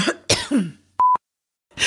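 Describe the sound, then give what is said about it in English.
A few harsh coughs and a raspy throat-clear, followed by a short steady electronic beep and then another cough starting at the end. “And I got a frog in my throat.”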